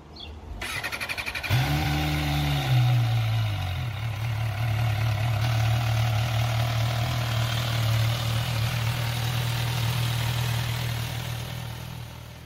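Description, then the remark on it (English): An inline-four motorcycle engine with a standard exhaust cranks briefly, catches and starts, then settles into a steady, smooth idle with a low, even hum. Fairly loud, with no revving and no voices. “As a standard exhaust, okay, well, we didn't get a rev, which is a shame, but we got the start up and a bit of idle. It sounded like an inline four.”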